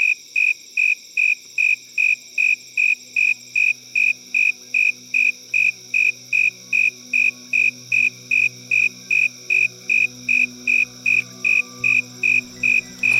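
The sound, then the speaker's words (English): A cricket chirps steadily and loudly for 14 seconds, about twenty evenly spaced high-pitched pulses in a relentless rhythm, with a faint low hum in the background and no voices. “So here's 14 seconds worth of cricket chirps.”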